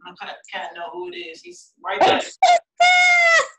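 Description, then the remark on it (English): A male pet cat lets out two or three loud meows in quick succession, the last one long and drawn out, following a moment of voices at the start. “My cat know who it is. He's right there.”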